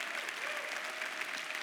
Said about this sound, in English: Would you give the Lord a great hand clap for his word? Amen.